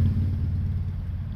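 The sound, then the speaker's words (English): A steady, low car engine rumble fills the cabin, heard from inside the vehicle with a constant droning hum and no voices. “Excuse the sounds in the background, y'all. I'm in my car.”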